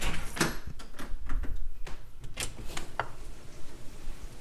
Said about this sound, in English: When I opened the door, she stuck her nose out and decided she wanted none of this.